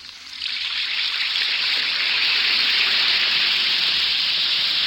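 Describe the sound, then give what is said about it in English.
An Alka-Seltzer effervescent antacid tablet fizzes in water, a steady, dense crackling hiss that swells in quickly at the start and then holds at an even level without any voices. “This episode will begin after a brief message from our sponsors. Listen to it fizz.”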